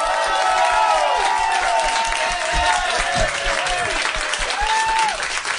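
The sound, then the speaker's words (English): Sustained audience applause as comedian Andy Kindler is welcomed to the stage fills the whole clip, a dense steady wash of clapping with rising and falling whoops and cheers over it, loud and continuous throughout. “Even without the applause sign, I'd be happy with that, even without it.”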